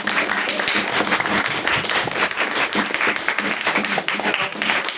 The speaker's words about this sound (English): Give her another applause.